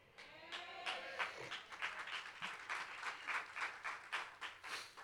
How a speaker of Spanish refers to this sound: Aplauso de golf, de ópera, ¿verdad?